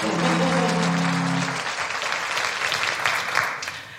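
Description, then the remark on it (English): An audience claps steadily in a dense, sustained burst of applause for a panel of security executives being introduced, with a brief low tonal hum at the start that fades within the first moments. “A round of applause for all of them, folks.”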